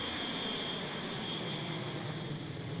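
A plane taking off, its engines producing a loud, continuous roar with a steady high-pitched whine running through it for the whole stretch, with no voices.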